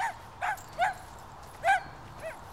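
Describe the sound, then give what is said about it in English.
In a scene from the film 23 Walks, a dog being walked in a North London park lets out about five short, high-pitched yappy barks at irregular intervals, fairly soft, over a faint low background rumble with no one talking. “is now starring in 23 Walks, playing a man who meets a woman as they both walk their respective dogs in a North London park, and they strike up a tentative late-life romance over a series of, well, 23 dog walks.”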